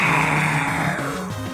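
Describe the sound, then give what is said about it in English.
A deep, rumbling roar from Elias, a creature in a story, that wavers in pitch and slides into a growl, loud, sustained for a second and a half with no talking, as Elias roars and dives at Finn. “Elias roared and dove at Finn.”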